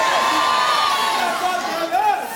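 A large church audience screaming and cheering together, a loud, sustained roar of many voices with rising shouts and whoops, filling the whole space with no single speaker standing out.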